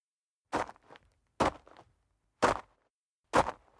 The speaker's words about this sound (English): I heard footsteps coming from the other side of the car.